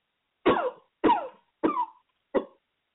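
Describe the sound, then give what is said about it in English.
A voice imitates a huge fire-breathing dragon coughing: four rough, gravelly coughs at a steady pace, the last one shorter, fairly loud with silence between them. “He was coughing a little bit.”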